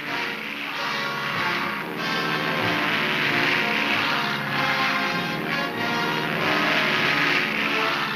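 A steady, loud drone of aircraft engines roars without a break, dense, with faint surges and a low rumble underneath; no voices are heard. American and British planes flying supplies into Berlin during the 1948 Russian blockade.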